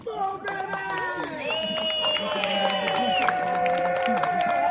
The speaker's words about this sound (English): You can't get coronavirus from clapping, so keep it up.